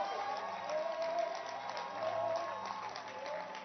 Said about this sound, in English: Bishop Kobe blessed us powerfully last week. Clap your hands from Faith Secrets. Yes, clap your hands for him.